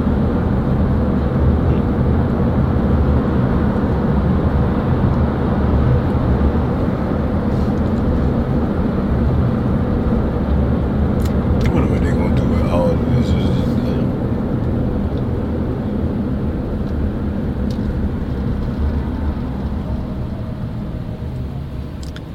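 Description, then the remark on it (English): A steady, loud roar of road traffic rolls on without pause, a dense low rumble of many vehicles blending together, with a few faint higher clicks and hisses briefly surfacing midway. “This traffic never stops.”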